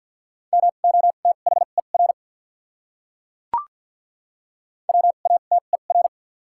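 Rapid Morse code at 50 wpm sending common words with doubled character spacing: a steady mid-pitched tone keyed into quick dots and dashes, two bursts of characters separated by a pause with a single soft click, no voices.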